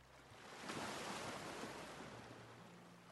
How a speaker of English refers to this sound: Listen carefully. You can hear it in the spirit. God said, listen to that sound. They never saw the rain. Waters of darkness splashing against the foundations of those who were so foolish to build their lives on the things of this world.